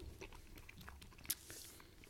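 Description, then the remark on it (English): A sharp bite into a crunchy ginger snap cookie, with one bright crack followed by soft, low chewing crunches, recorded quietly with no talking. “See, because they're a little bit of snap, a little bit of crunch.”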